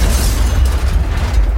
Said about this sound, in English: Excuse me, I dropped a very large tray.